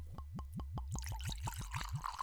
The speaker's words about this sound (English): So That's what's on the bottle. It's 115 proof, and I'm not getting an age on here initially. Let me pour.